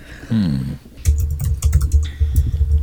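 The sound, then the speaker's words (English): Rapid clacking of fingers typing on a computer keyboard, a steady run of crisp keystrokes lasting a couple of seconds, preceded by a brief wavering hum. “If we were really cool and could do like a live stream of people typing, I think they would enjoy watching this.”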